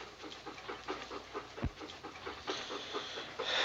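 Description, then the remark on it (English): Dogs pant quickly and steadily, a rapid rhythmic huffing of breaths that grows slightly louder and harsher toward the end, with no one speaking. “But we sure would appreciate it if you could see your way clear to take these dogs off our hands.”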